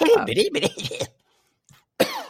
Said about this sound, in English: I miss Bojangles. That made me cough just hearing, thinking of her voice.